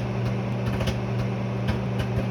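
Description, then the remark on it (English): A bag of Orville Redenbacher microwave popcorn popping: scattered, irregular pops every fraction of a second over the steady low hum of a running microwave, with no voices. “It takes about 3 minutes now to pop a bag of Orville Redenbacher in the microwave.”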